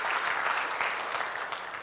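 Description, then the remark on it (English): A church audience at Abundant Life Church claps steadily for visitors, a dense, even wash of applause with no individual claps standing out, moderately loud and sustained throughout without any voices on top. “Let's give our visitors a good round of applause.”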